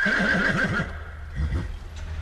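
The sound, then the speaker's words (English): A horse gives a loud whinny with a quavering, wavering pitch as horses are being harnessed up, then a second shorter, lower whinny follows after a brief pause, with no talking. “Yeah, you're going to start harnessing up. Get the horses ready.”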